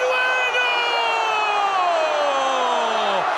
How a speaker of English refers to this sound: In Peru, the celebration of people jumping and screaming after Farfán's goal was so intense, it activated an earthquake alarm detector in Chile.